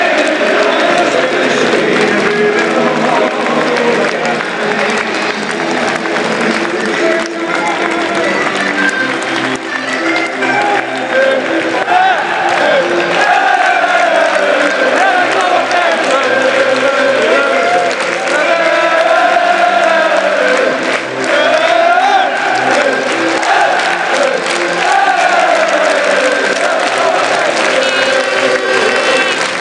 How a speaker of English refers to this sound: the fans, they're applauding the team as they wander over to the, basically the divide.